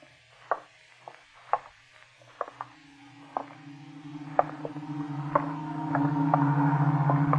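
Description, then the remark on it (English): In Cromer at dusk after rain, water drips irregularly from the eaves, then the low, steady droning hum of a Beaufort long-range fighter aircraft's engines swells and grows louder over the last few seconds, with no talking. “No, that's a Beaufort fighter. Long-range fighter.”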